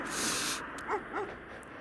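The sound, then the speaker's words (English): Two short, faint barks from a couple of dogs on a farm, spaced about a third of a second apart, following a brief rush of breathy noise. “Oh, we got a couple dogs there.”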